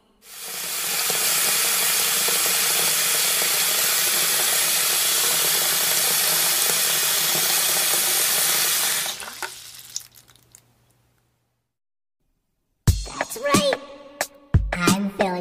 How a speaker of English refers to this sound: Water. Now it's a water balloon.